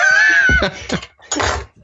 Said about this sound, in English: It sounded like it was being winched up by a rope. No, there was a creak of floorboards.